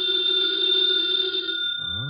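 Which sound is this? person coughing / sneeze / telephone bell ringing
telephone bell ringing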